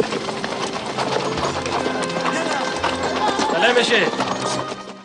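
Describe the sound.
Hooves of Mujahideen horsemen's horses clip-clop in a steady run of repeated beats, set within a busy, dense mix of background sound and indistinct voices, in a Rambo film scene.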